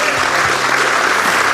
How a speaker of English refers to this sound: Well, we're just about out of time, so I'd like to thank Brian Harry. Give him a big round of applause.